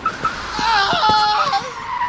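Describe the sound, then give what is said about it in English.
Several cars skid at once on a freeway after a cat lands in the road, causing a 20-car pileup; tires let out loud, overlapping high-pitched screeches that hold steady for about two seconds, with a few short thuds mixed in as the squeals waver. “Caused a 20-car pileup, but the only thing I lost was my eardrums.”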